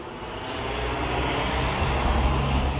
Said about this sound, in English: And I can hear the sound of an engine firing up right next to me.